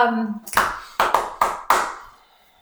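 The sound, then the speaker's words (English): A brief voice, then four sharp hand claps made to sync a recording, in quick succession, the last three evenly spaced, each ringing out briefly before it goes quiet. “We'll just go clippity-clap it.”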